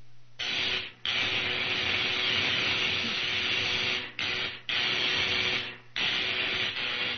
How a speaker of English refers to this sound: Now, I adjust these dials, turn on the electrical generator, and...